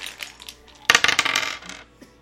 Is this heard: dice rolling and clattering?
yes